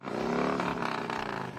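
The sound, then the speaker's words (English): A dense, continuous roar of many motorcycle engines at a large motorcycle rally in a valley town of about 7,000, loud and steady throughout with layered throbbing tones and slight surges, no voices present. “It's a massive roar that encapsulates our entire valley here.”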